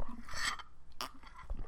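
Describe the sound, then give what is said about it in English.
Mouth sounds of someone sipping tea, two short wet slurps with a brief pause between, quiet with no talking. “I gotta sip some more tea, guys.”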